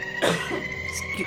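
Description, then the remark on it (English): A short cough from a person with a cold bursts out once, followed by a couple of softer throaty rasps, with no talking over it. “Was it a cough in the title, or was that a genuine”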